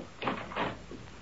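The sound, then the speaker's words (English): A front door opens with a short creak and a muffled thud, a couple of quick wooden sounds. “Open the door”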